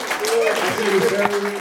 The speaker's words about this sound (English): Clap for that, y'all. Y'all gotta respect that shit.